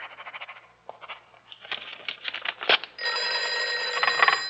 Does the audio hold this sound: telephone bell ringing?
yes